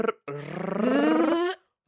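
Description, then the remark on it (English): A person attempts a rolled tongue trill but produces a sputtering, gargly buzz instead, one sustained burst of about a second that rises in pitch, fairly loud, with no other sound. “I sound like a car that won't start.”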